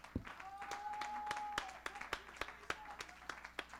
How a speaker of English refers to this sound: Somebody ought to clap your hands and give God praise.